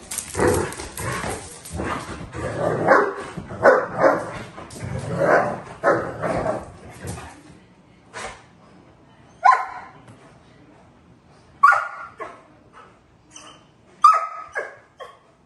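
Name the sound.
dogs barking excitedly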